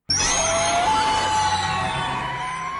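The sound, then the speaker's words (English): A loud, harsh cry of the Pokémon Reshiram holds steady for about three seconds, a rising screechy whine layered over a rough, guttural roar, with no voices. “Let me share my, I'm going to stop sharing and then share my sound with you real quick, because I think it's important that you hear the horrible guttural noises that Reshiram makes in his, when he is alone.”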